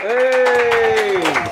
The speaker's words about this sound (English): So the first one I wanted to welcome to the show, let's give a nice, lovely round of applause for the very funny Dave Temple.